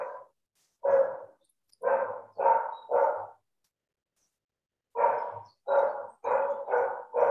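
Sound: dogs barking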